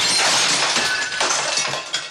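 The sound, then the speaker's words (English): Rocks crash through the glass windows of a home, a loud, continuous spray of breaking and tinkling shards with several sharper impacts, with no voices. “suddenly rocks are crashing through the windows of Matthew's home”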